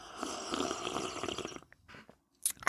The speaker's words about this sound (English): Slurping my coffee. I know it bothers some and that's why I do it.